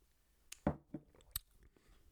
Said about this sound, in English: Take another sip now just to be sure, because this milky little drink is pretty tasty.